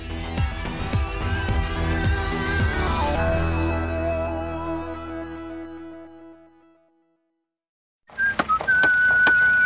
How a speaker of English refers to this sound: spent his 40-year career whistling as he worked.